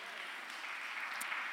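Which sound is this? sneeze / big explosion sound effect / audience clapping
audience clapping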